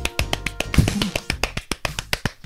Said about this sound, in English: I clapped real quick. You're terrible. That's the quickest I could clap.